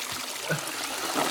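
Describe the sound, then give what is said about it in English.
A toilet flushing, a steady rush of gurgling, hissing water that stays fairly loud for a second or so, with no one talking. “I have to flush this.”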